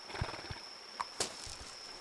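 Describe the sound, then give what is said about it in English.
Horse hooves clip-clop in an uneven rhythm of soft thuds, fairly quiet, as someone approaches on horseback, over a faint steady background hum with no voices. “My friends, someone approaches on horseback.”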